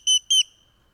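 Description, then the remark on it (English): A huge grackle with a really long tail and a huge beak gives two short, shrill whistling notes in quick succession, bright, with a brief ringing fade before quiet returns. “It's a grackle, but it is huge with a really long, cool tail and a huge beak.”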